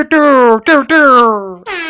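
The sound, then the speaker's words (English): A voice imitates an air horn with four loud blasts in quick succession, each a buzzing tone that sags slightly in pitch, the third held longest. “Maybe, you know, that air horn button that people push?”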